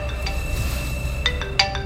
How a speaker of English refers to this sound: The phone rang before I could figure it out.